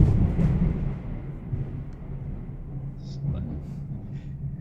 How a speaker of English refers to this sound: Big lightning, man. There was big lightning that happened, and then it just came down. The thunder.